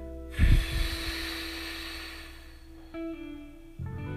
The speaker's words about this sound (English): First, I want to help you breathe. So first, we're going to start by exhaling, pushing out.